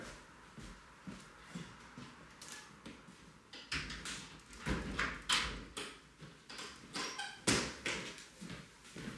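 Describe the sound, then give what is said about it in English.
A window is slid and pushed shut, with rattling, tapping and shuffling mechanical noises coming in uneven bursts over several seconds. “Can I close this window too?”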